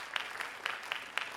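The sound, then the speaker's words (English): An audience claps to vote in an informal poll on liking plain M&M's better than peanut M&M's, a steady wash of hand claps with sharper beats landing roughly four times a second, fairly soft overall and with no voices over it. “If you like plain M&M's better than peanut M&M's, let me hear you clap.”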